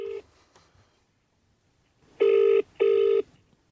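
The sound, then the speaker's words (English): An outgoing phone call's ringing tone: two steady electronic double-pitched buzzes, each about half a second, with a brief gap between, clear, following a short fragment of a previous ring. “I just rang you there to ask you a question about crows”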